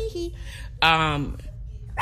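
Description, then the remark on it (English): A dog licking a person gives a single short, high whimper that slides downward in pitch, against a low steady background rumble. “stop licking me. That's my crazy dog.”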